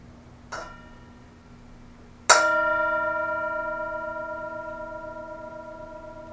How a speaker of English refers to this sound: As always, we have the Tibetan singing bowl because we are always invited to presence. Enjoy the sound of the bell.